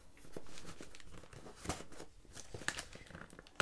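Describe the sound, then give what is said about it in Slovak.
A paper package being torn open in quick, crinkly bursts, with sharp rips and rustling, no voices over it. “No dobre, tak trháme.”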